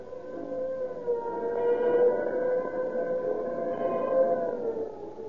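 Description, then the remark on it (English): A police car siren wails steadily, its tone swelling and falling in slow cycles, loud for several seconds with no voices over it. “When you hear the scream of the siren and police cars go tearing past, let it remind you that more police cars use Rio Grande cracked gasoline than any other brand.”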